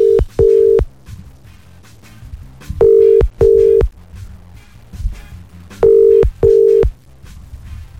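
A telephone ringback tone from a radio morning show's wake-up dedication call to a listener sounds in three double-pulse bursts, each pair of steady mid-pitched beeps followed by a pause, repeating with no one picking up, over a faint low background hum.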